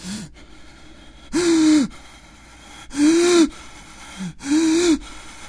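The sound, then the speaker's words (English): Three loud, ragged gasping breaths, each a short voiced rasp, repeat at a steady pace, like a frightened man breathing heavily with the covers pulled over his head in bed. Nobody speaks. “ran into his bedroom, slammed that door, and pulled the covers up over his head in the bed, breathing heavily.”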